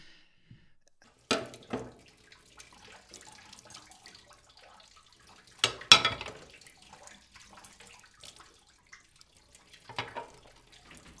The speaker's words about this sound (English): Play the sound of a woman washing dishes.